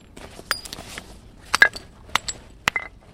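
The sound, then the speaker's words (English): A UC Berkeley archaeologist uses a moose antler as a hammer to knock large flakes off a piece of brown and black obsidian while making an arrow point: about half a dozen sharp, glassy clinks at irregular intervals, a couple in quick pairs, one ringing briefly. No one speaks. “Using a moose antler as a hammer, he's chipping off large flakes from a beautiful piece of brown and black obsidian.”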